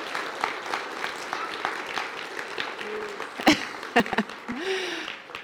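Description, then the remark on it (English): A church audience claps steadily, a dense patter of many hands with a few sharper claps and faint voices or whoops rising above the applause. “come up here, and let's give a huge applause.”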